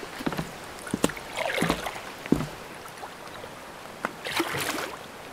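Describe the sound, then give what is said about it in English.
Oars dip and pull through river water as a boat is rowed across the river, a few splashy strokes, each swirl of sloshing water fading before the next stroke, with no voices. “Rowing, sleeping, wind in our hair as we cross country.”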